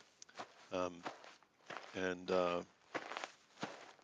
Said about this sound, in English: I might just turn that sound off. Cause we've all stopped walking. Yeah, we stopped walking.